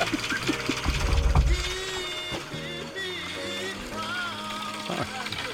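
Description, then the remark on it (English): The engine of a small old boat putters, starting with a low rumbling burst, then settling into a whirring drone whose pitch shifts in steps up and down. “Want to hear my boat?”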